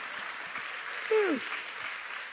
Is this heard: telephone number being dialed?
no